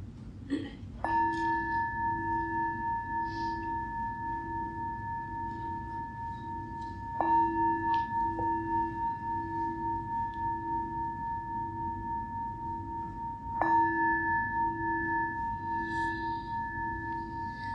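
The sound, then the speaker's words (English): A meditation bell is struck three times, about six seconds apart, to start a sitting meditation. Each strike rings out in a long, steady, shimmering tone that keeps humming until the next one, with no talking. “Start with the bell.”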